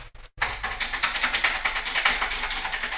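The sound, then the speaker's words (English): Rapid, steady clicking of someone typing on the mechanical keyboard of an old Apple II Plus computer on a desk, keys clacking in an irregular but continuous rhythm with no voices. “That's the Apple II Plus at the end of my desk that I used to let Jane type on”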